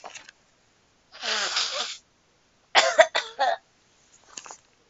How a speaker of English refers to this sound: Sorry, I just had to blow my nose.